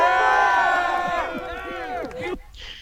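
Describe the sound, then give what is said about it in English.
A rally crowd cheers loudly, many voices shouting and whooping together in a dense, sustained roar that drops off suddenly near the end, leaving a faint hiss. “And then the reaction of the crowd, like, there's a pause.”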